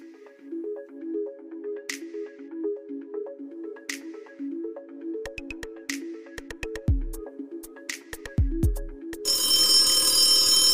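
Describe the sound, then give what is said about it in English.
A phone rings with a repeating electronic melodic ringtone for several seconds, joined by sharp clicks and thumps, then cut off by a loud burst of static-like noise. No one speaks. “You're giving me the phone signal. That's not. Looks like a middle finger. The phone. Answer it. Answer it.”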